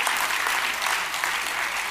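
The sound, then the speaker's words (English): An audience claps hands for the Lord in steady, dense applause that stays loud and even for about two seconds, a continuous crackling wash with a few voices faintly mixed in. “Come on, put your hands together and give the Lord a hand clap, a shout, and a hallelujah.”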